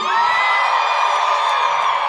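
audience screaming and cheering

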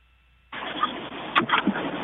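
car engine starting

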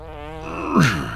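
fart

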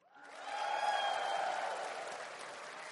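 audience applause

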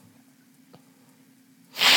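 blowing nose

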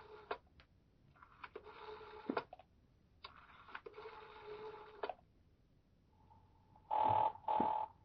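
telephone being dialed

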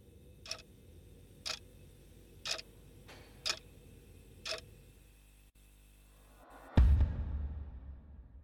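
clock ticking

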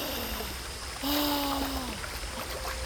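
flowing river water

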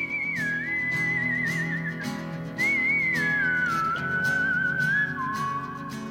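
whistled melody

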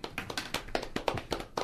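round of applause

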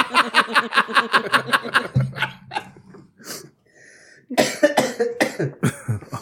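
coughing

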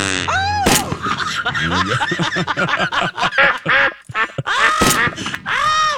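bird calls

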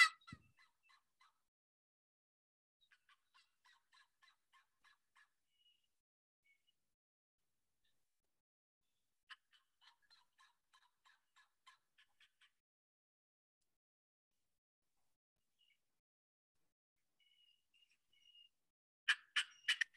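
wild turkeys gobbling

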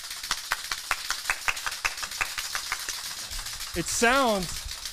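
round of applause

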